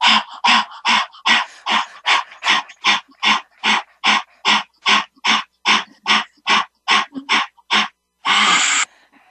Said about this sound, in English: you breathe in, and then you breathe out through your mouth